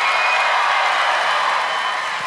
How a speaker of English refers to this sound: First film was Switch to Christmas. Round of applause if you think that's fake.